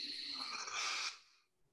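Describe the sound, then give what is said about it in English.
A deep breath in through the nose during a breathing exercise: a long, steady inhale, a broad airy hiss that swells and holds for about a second before cutting off into quiet. No talking over it. “But if you take 5 sort of deep breaths, and what I mean by deep, it's just literally breathing in through the nose.”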